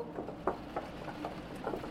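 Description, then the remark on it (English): Soft, irregular tapping of rain, a handful of light drops striking a surface at uneven intervals over a low, steady background hush. No voices. “Unbelievably, I heard more tapping. But this tapping was rain.”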